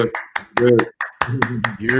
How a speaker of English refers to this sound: And we actually have some special guests in the room right now. Can we clap it up?